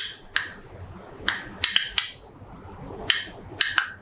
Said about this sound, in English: Researchers at Tel Aviv University brought these sounds to life by recording them and manipulating the frequency so that human ears can hear them. We'll play it again. And here's what a grapevine sounds like.